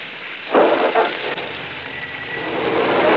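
Steady rain hisses throughout, a dense, even wash of noise with two brief louder surges early on before it settles into a constant patter.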